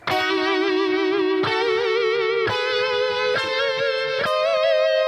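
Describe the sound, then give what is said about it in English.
Sustained distorted electric guitar notes run through a harmonizer pedal on its diminished harmony setting, stepping through about five chords in slow succession, each attack clear and loud with thick stacked harmonics and no voices. “And can you play the diminished harmony? Yes, diminished harmony.”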